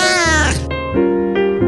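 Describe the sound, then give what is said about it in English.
A loud cat meow, long and drawn out with a wavering, sliding pitch that shifts into a steadier, plaintive cry. No other sounds accompany it. “Not sure if you know this or not, but today is National Cat Day.”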